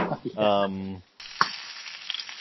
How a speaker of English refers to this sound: Oh. We're getting some flame broiled action in the background here, it sounds like.